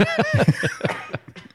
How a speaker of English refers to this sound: Are you not going to be doing that all day? Are you coughing? I hope not.